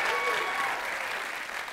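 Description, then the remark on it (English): A crowd applauds steadily, a dense wash of clapping at a fairly even loudness that tapers slightly toward the end, with no voices standing out. “And let me guess, were you applauding for me or for her?”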